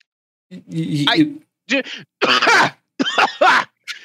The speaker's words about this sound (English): Sorry, I actually coughed there. That wasn't fake.